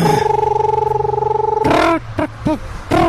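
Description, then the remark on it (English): A person imitates a screech owl's call with a long, steady, rapidly pulsing trill, then a few shorter wavering voiced notes, fairly loud. “or the screech owl that goes...”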